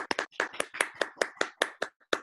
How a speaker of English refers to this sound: I know I'm clapping alone.